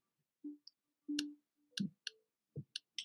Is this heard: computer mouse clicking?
yes